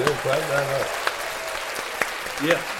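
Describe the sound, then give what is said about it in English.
Steady applause from a group for a woman graduating from Harvard Law School, a dense crackle of many hands clapping throughout, with brief cheering voices rising over it near the start and again toward the end. “Clap that up.”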